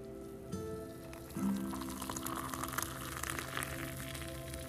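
Hot Nescafe coffee pours steadily into a coffee mug, a continuous splashing trickle lasting several seconds over a faint low hum, with no one speaking.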